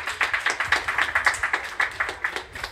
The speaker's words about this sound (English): Can we have a round of applause for all of that?